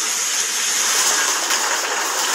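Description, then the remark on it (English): A hailstorm of large hailstones pours down in a steady, dense roar of hissing, crackling impacts, loud and unbroken for the whole stretch, with no voices over it. “There you go. Hailstorm, people. That big.”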